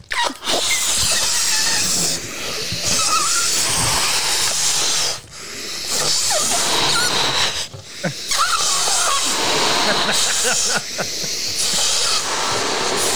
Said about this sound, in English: Blowing up balloons on the internet. This is quality audio content.